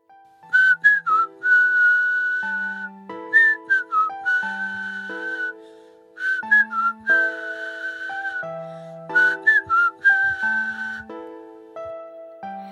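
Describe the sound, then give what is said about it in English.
A nightingale's song rendered as a bright, tuneful whistled melody of gliding and warbling notes over soft sustained chords. The phrase plays twice with no talking. “No one would think that a beautiful song could come from you.”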